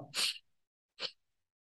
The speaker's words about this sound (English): And pulse breathing is when you're inhaling in pulses as you increase your breath. So I'll do it a little louder into the mic so you can hear it.